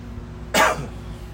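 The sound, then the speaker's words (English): A single short, dry cough from a months-long tickle in the throat bursts out sharply and fades quickly, with no one talking around it. “I've had this tickle in my throat for months.”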